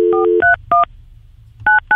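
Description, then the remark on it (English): A quick series of telephone keypad tones as someone dials a phone number, five short beeps in an uneven rhythm with a brief pause in the middle, each crisp two-pitched dialing tone clear over a faint background hum. “Just dial it as you normally would. Dial it as if it was a local call.”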